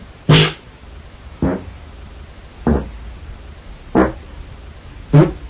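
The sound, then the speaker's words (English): Five short farts from a man asleep at night, recorded while he meant to record his snoring, at a steady pace, roughly one every second, each a brief rough burst over a constant low hiss of room noise. No one talks. “It's like the scales of farts.”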